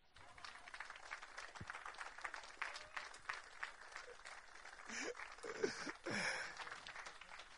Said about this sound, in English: Thank you. I thought you'd give me a clap.